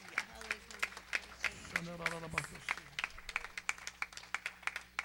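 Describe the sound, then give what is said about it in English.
A crowd of people clapping their hands in praise, a dense and steady wash of applause with sharper individual claps standing out, while a voice calls out briefly over it. “Come on, give him a good hand clap of praise.”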